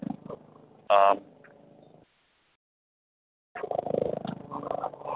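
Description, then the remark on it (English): A helicopter overhead gives a low, pulsing rumble, broken by a brief louder tonal whine and then a couple of seconds of near silence before the throbbing drone returns at moderate volume. “And now there's a fucking helicopter flying overhead.”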